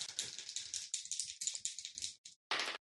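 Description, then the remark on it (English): Dice rattling and clattering in a rapid, bright stream of tiny clicks, then a brief pause and a final burst of clatter as they settle, rolled with advantage for a perception check. No one speaks. “I'm going to roll with advantage.”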